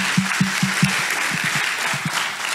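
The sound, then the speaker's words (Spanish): A church audience applauds God, a steady wash of many hands clapping, with a run of regular low thumps pulsing beneath it like clapping or beats in time. “y si Dios permitió escasez en tu vida para por eso tocar la fibra de tu corazón y le puedas buscar, bendito sea el nombre de Dios, porque le doy un aplauso entonces a él por eso.”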